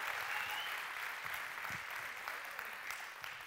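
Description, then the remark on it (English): A church crowd claps steadily for a few seconds for eight people baptized that morning, a dense, even wash of applause with no voices standing out, holding at a fairly constant loudness throughout. “Can we hear it for the 8 folks that got baptized this morning?”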